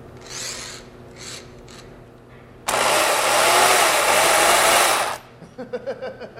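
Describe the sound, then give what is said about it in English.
Harsh rasping as a blade smooths the rough, uneven surface of an ice block to even it before carving: a few short scrapes, then a loud, steady grinding roar for a couple of seconds, ending in quick rhythmic scraping strokes. “We're just kind of smoothing out the surface of the ice, because it was real rough and uneven, so we're just kind of making it a little bit even, more even right now.”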